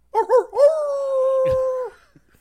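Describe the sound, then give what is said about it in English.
A man imitates a wolf howl: two quick yelping bursts, then one long, steady, sustained howl, loud, with no other talking. “With me, as they will be every single week, are a couple of guys once described as if Siskel and Ebert and a wolf had a baby,”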